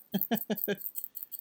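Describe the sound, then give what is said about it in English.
A small bottle of milk-tea-coloured glass pen ink with pearl particles is shaken in four quick, rhythmic rattling strokes to mix the settled pigment, followed by fainter, softer shakes trailing off. “Anyway, you gotta shake it to mix up the milk tea portion.”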